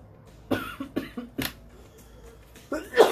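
A person coughs several times in quick, uneven bursts, pauses briefly, then lets out one louder, harsher cough at the end.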